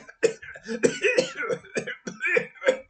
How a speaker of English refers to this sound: who breaks into a violent fit of coughing and that momentarily leaves him breathless.